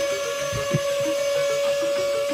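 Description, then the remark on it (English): A microwave oven runs with a steady, droning electrical hum and a faint mechanical rumble underneath, holding an even loudness throughout with no voices. “Throw it in the microwave. It's time for the hot take machine.”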